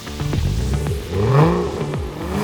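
A Ferrari sports car engine revs hard several times in quick succession, its pitch climbing and dropping with each throttle blip, loud with no voices.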